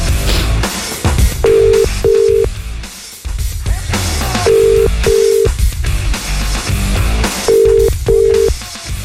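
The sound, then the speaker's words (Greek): A telephone ringing tone repeats in three sets of paired beeps, evenly spaced, with the call going unanswered while loud music plays underneath throughout. “έκανε τη συμπεθέρα και δεν σηκώνει άνθρωπος τηλέφωνο, ρε φίλε.”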